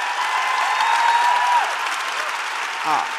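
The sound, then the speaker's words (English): Audience applause, a dense, steady wash of clapping that holds at an even, fairly loud level for about three seconds, with a brief voice breaking through near the end. “Applaud that.”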